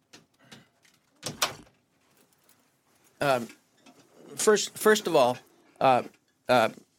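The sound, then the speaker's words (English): A door is pushed shut with a few handling clicks and a firm latching thud near the start, followed by a brief lull and then people speaking. “Let me just close the door for a second.”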